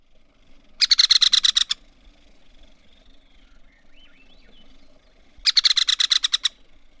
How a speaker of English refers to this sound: Here is the rattle call of the American three-toed woodpecker.